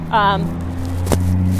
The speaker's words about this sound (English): I am sorry, traffic is, like, crazy on the street that I'm on right now. Let me bring the microphone closer.